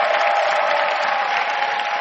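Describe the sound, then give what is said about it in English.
An audience claps hands to welcome the Bishop, a steady, dense wash of applause, loud and sustained for the full two seconds, with faint cheering mixed in and no speech. “Let's clap our hands and receive Bishop.”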